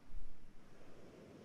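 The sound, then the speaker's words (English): A soft, steady wash of surf, like waves rolling onto a beach with golden sand, swelling briefly near the start and then settling into a quiet, continuous hiss. No voices. “See yourself on a beautiful beach with golden sand. Listen to the waves.”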